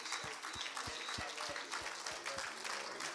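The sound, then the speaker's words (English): An audience at Hatchbend Apostolic Church claps their hands together, a dense wash of many hands with a few sharper individual claps recurring roughly every third of a second, steady and fairly loud throughout. “Why don't we just clap our hands?”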